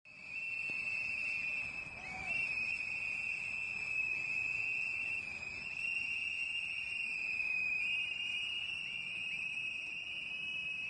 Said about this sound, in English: You're listening to the sounds of activists blowing whistles outside of Alexandria Detention Center in support of yourself, Jeremy, and Chelsea locked up in a jail, and Julian Assange in the UK.